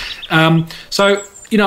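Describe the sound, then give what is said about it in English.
Recorded bird calls play back loudly from a website: three harsh, buzzy calls in quick succession, each about half a second long, with short gaps between them. “I think you've actually got Will's website open right now, Luke, and he's playing some bird sounds”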